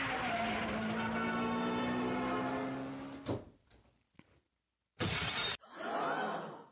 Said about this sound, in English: That's me approximating a car accident.